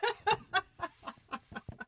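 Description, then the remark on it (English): A bird in a backyard in Los Angeles calls loudly, letting out a quick series of about eight harsh, clucking notes that gradually soften toward the end. “She talked to me from a backyard in LA where there was some pretty vocal wildlife.”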